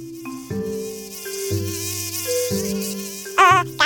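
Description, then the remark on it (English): A steady, whining mosquito buzz drones over a backing of shifting low musical tones, ending in a brief wavering, louder whine. “can we talk about just killing all the mosquitoes?”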